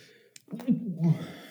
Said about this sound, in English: That was a fun noise that you just made. I was trying to hold a sneeze in. Sorry, it hurt.